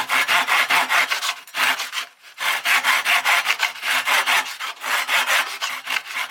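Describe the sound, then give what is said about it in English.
Rapid, rhythmic back-and-forth strokes of a neighbour's saw cutting wood, fairly loud, in two quick bursts separated by a brief pause, with no talking. “Then he soars. In short bursts. Always in short bursts.”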